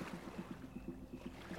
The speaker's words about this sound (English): You start your day with a stroll on the sand and a paddle out into the chilly Pacific. There are dolphins jumping as you ride your board out to the break. The waves are coming, the surf is salty and refreshing